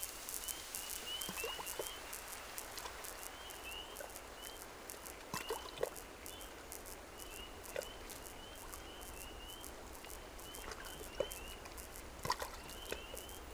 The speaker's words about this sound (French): Même si je parle pas exactement le langage de la grenouille verte, elle entend quand même un son bizarroïde et étrangeiforme, et du coup ça la fait réagir. Vous avez des grenouilles qui vous répondent.